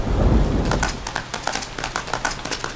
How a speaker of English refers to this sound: I'm scared. The sky is falling and I'm afraid of thunderstorms.